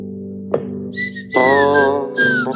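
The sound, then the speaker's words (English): Someone whistles a melody, fairly loud, with the pitch gliding between notes over a steady low musical backing. No one speaks. “doing both the whistling and the dirr.”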